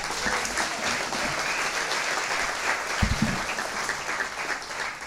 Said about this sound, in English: So, clap for her.